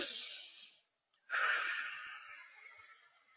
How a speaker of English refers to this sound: Woo, that's a good one. I'm breathing that in.